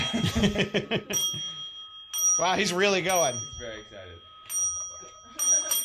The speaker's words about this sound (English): Go ahead. Ring the bell. Yeah! That's right. You want to ring it again?